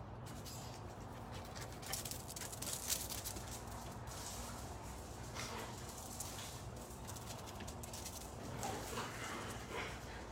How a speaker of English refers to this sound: Damn dogs.